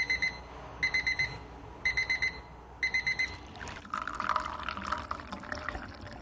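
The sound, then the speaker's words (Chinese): A tea-steeping timer goes off with four bursts of rapid, high electronic beeps, each a quick run of about four beeps, and then liquid pours steadily. The timer marks three minutes of steeping Chinese Mao Feng green tea at a tea house in Portland. “这种绿茶需要浸泡三分钟后才能获得最佳效果，计时器此时能够发挥作用。”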